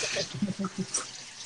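Steady hiss of shower water running throughout, a constant wash of spray heard at a middle distance, with a few short muffled voice sounds breaking in near the start.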